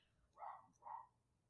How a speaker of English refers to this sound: If you can't hear the dog barking in the background. Can you hear him? No, it should have the noise reduction on, so hopefully not.